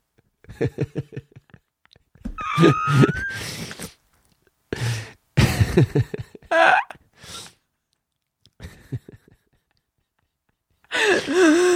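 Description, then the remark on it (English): A series of short, deliberate forced burps made by taking air in and pushing it out, spaced out over several seconds and fairly loud, with brief gulping and breathy sounds between them and pauses of silence. “You got to get it in there and then burp it out.”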